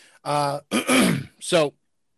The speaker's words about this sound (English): You see, he had to clear his throat, right?